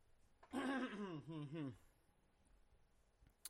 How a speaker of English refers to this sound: So, I needed to clear my throat on that one because this one is going to be very serious,